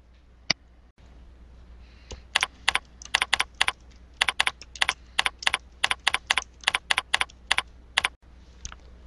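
A run of quick, crisp keystrokes tapped out on a computer keyboard in an irregular rhythm as a post to share is written, fairly clear, with a few isolated clicks before and after and no talking.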